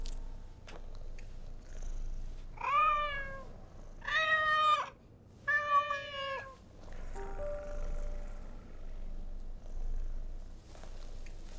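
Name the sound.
cat meowing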